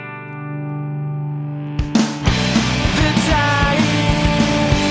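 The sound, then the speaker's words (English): A sustained, heavily distorted rock guitar chord rings out alone as the guitar volume is turned up, then loud driving drums crash in and the band pounds along with dense, fuzzy guitar, melodic bass and steady hits. No voices. “There's full distortion and driving drums and melodic bass.”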